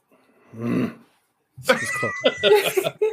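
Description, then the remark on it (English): A man lets out a short, low, rumbling growl, like an animal. After a brief pause, several people break into bursting laughter. “Did he just growl at us?”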